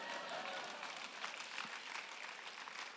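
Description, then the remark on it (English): The speaker claps alone, hands clapping continuously for three seconds, a dense, fast patter of sharp slaps at a steady, fairly loud level, with no voices over it. “If y'all ain't gonna clap, I'll clap myself.”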